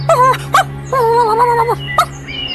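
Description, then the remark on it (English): A dog named Chico whimpers and wails at home, a few short high whines followed by a long wavering cry that rises and falls, then a brief sharp yelp, over a steady low hum. “Back home, Chico was making a lot of commotion.”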